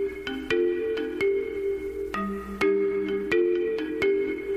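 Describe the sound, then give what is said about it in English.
A movie theme song: a bright, mallet-like melody of struck tonal notes plays in a steady, bouncing pattern, resembling a xylophone ringtone, with sustained harmonic tones underneath and no voices. “that was the theme song from American Beauty”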